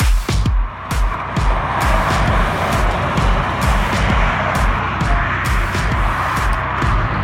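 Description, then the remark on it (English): A loud car engine roars steadily for several seconds, punctuated by a rapid series of sharp bursts and pops over its low rumble, with no voices. “And that car sound, by the way, is courtesy of Harry.”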